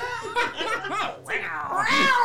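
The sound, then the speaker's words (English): Several drawn-out, wavering meows follow one another, fairly loud, mixed with bursts of laughter, ending in a longer rising and falling meow. “Did the panther show up?”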